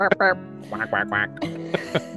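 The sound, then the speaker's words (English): A person imitates a chicken with a rapid string of nasal clucks and squawks, fairly loud, in several short bursts over about two seconds. “Or we could do a chicken sound.”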